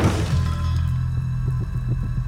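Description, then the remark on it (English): A heavy thump and crash of a front door being smashed in during a breach bursts out at the start, then gives way to a low, steady rumble with a few soft, repeated knocks. No voices. “Copy, and then you hear the breach, and then you hear a loud thump and smash of the front door being broken in.”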